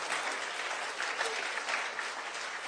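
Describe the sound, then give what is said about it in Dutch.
An audience applauds God during a bilingual Dutch and English sermon: steady, a dense wash of many hands clapping at an even level for a few seconds with no voices standing out. “Kom op, geef God een applaus.”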